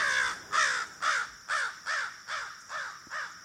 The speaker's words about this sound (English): But crows have more of a caw, caw.